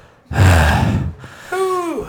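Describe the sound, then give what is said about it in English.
Heavy breathing right into the microphone: a loud, rough exhale followed by a shorter breath that ends in a faint voiced, sigh-like tone. No talking. “I'm just gonna breathe in the microphone for a while.”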